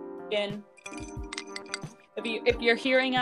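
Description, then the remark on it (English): A drinking glass clinks gently several times, with a few soft, dull thuds from a lemon inside it, and a murmuring voice in the background. “Because folks, I want all seven listeners to hear the gentle clinking of mine.”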